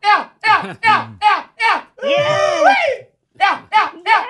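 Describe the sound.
A man's voice gives a rapid hunter's call for calling in the dogs from a hunt: five short, high yelping whoops, then one long, wavering holler, then three more quick whoops, loud and alone.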